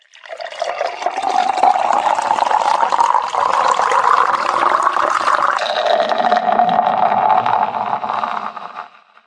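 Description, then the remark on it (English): A steady stream of root beer pours from a tap into a mug at a bar, the gurgling tone rising as it fills, then shifting to a foamier hiss as the foam overtakes the rim, before stopping after about nine seconds. “The foam overtook the rim as he poured an extra large fizz from the tap.”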